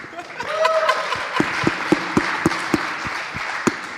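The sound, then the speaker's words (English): A crowd applauds, a dense wash of clapping with a few sharp, evenly spaced claps standing out, a faint murmur of voices underneath. “I didn't get a clap.”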